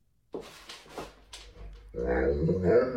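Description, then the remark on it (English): A dog walking up behind a woman doing an outfit check gives a short run of whining, syllable-like vocalizations that mimic human speech, as if asking where she is going, moderately loud, before a denser, steady sound takes over for the last second. “A woman posted a video of herself doing an outfit check, and then her dog walks up to her behind her and seems to ask, "Where are you going?"”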